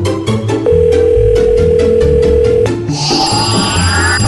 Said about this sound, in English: Sometimes I fear dialing this rotary phone and seeing what's going on with my grandma and her friends.